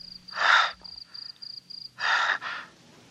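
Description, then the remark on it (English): Two loud, breathy rasps, a long exhale and then another after a pause, performed by a voice mimicking heavy breathing down a phone line as a killer's message to a woman in a 1977 Nazi zombie film, with a steady high insect-like chirp pulsing in between. “When she answers the phone, he leaves the typical serial killer message. Hello? Heavy breathing.”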